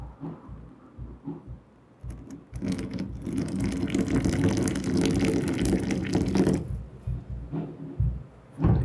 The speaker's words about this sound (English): That's a wonderful pour, Simon. Such a delicate application of water to the ground coffees.